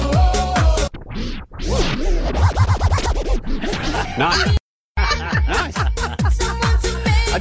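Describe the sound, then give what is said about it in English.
DJ turntable scratching during an on-stage DJ audition demonstration: rapid back-and-forth swooping pitch sweeps layered over a loud, punchy beat, with a brief abrupt dropout midway before the rhythmic scratching resumes. “DJ, I want you to turn it up.”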